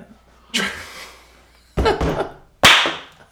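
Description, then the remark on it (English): Three loud, sharp drum hits from a music track, each a bright, crashing smack that rings out and fades before the next. They are unevenly spaced, with no voices over them. “That was the drums.”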